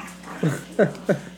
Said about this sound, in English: Hey, calm down. Calm down on there. Damn dogs.